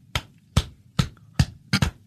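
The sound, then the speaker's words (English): A foot is dropped onto a hand as hard as possible as an improvised drum-like music sound, giving sharp, heavy slaps: five hits spaced about half a second apart, the last two in quick succession, loud against a quiet low hum. “Yeah, that's just me dropping my foot on my hand as hard as I can.”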